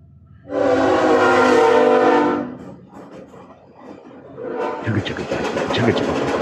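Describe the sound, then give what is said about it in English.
A train horn blares loudly for about two seconds, then a slow passing train rumbles and clatters, its noise building steadily toward the end. “You can hear the chugga chugga.”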